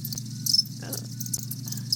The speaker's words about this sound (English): Do you hear the crickets? Can you hear the crickets in right here?